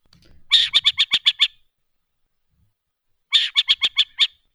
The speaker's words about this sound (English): But just for from a more scientific point of view, here are a couple calls that are familiar from the Western burrowing owl. This is their call.